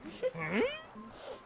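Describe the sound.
A wordless human whimper performed by a voice actor as a live vocal effect: a brief strained whine that rises and wavers in pitch, then trails off into softer breathy moans.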